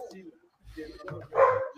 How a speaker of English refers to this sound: I think my wife and them are coming home. My dog's going nuts.